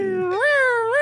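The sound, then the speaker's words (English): A person imitates a cat's meow, a drawn-out, fairly loud mewing call that rises in pitch twice, with nothing else audible around it. “It was like a cat at first. It was a cat.”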